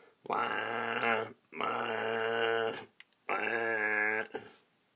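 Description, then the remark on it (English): A voice imitates a chainsaw cutting up a felled tree left on the ground for firewood: three sustained, buzzing, harmonic-rich bursts, each about a second long with brief pauses between, loud and gritty like an engine revving through a log. “Boop, chainsaw.”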